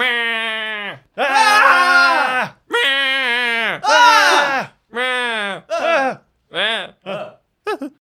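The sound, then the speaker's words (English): A person's voice mimics a creature screaming: a string of about eight loud, shrill, wavering shrieks with sliding pitch, the later ones shorter and choppier, with no words. “And he stares at you and then screams.”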